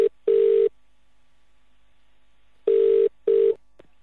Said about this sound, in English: Who are we ringing? Why have we got a phone line? What's going on?